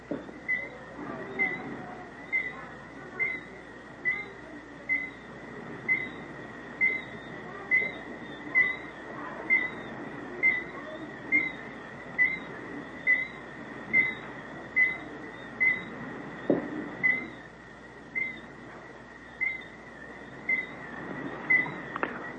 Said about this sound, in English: That bird will keep that up all night. Now I can hear another one answering him from a couple hundred yards out. Listen.